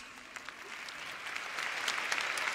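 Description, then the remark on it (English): An audience claps for pioneers, a dense patter of many hands that starts moderate and steadily swells louder over a few seconds, with no voices standing out. “I'll tell you why I'm clapping for that pioneer right there.”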